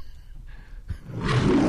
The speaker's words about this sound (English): Whoa, that's loud. It's the lion. It's the lion. I thought MGM went out of business, but they